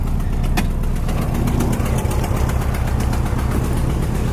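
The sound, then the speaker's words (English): A car engine idles with a steady, low rumble and faint rhythmic knocking as the car backs out of a garage, holding constant loudness throughout with a brief higher click early on. “All right, so I need to back out of the garage, and then I have to go manually close the garage door.”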